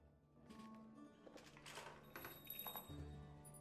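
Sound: doorbell ringing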